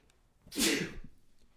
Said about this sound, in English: Excuse me. I sneezed, but I did it off mic.